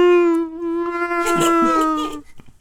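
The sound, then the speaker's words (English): A person voices a long, steady, droning tone that mimics a whale call, as in Star Trek, meant as saying thank you in whale language. It is held for about two seconds and grows rougher and breathier near the end before trailing off. “I was saying thank you in whalish.”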